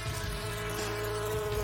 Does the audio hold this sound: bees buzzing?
yes